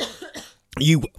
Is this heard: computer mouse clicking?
no